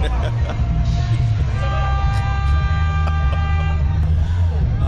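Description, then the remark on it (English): A large bus rumbles past very close on a street, almost scraping a person's arm, its heavy low engine roar filling the street, with a steady whining tone rising over the traffic noise for a few seconds. “That bus almost scraped my arm.”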